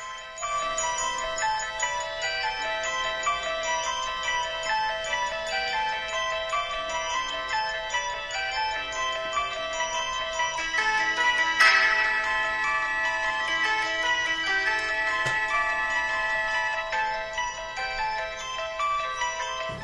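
A repeating, chiming melody of bell-like and piano tones plays steadily with an eerie, hypnotic feel, layered harmonics ringing throughout, with no voices; the iconic theme of the film The Exorcist.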